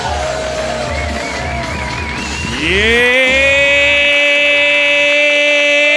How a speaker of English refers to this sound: And now, we ask you to put your hands together, stomp your feet, make some noise for the one and only, Sherrod Small!